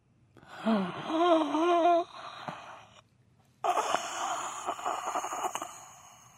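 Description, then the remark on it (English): Someone performs exaggerated heavy breathing as a background sound effect: a wavering, moaning wheeze, a brief pause, then a longer stretch of loud, raspy panting breaths. “Oh, I thought you told me heavy breathing. I'm just doing it.”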